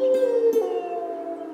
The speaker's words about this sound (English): Oh, no! That was a wolf howl. A fierce, ferocious wolf must be nearby.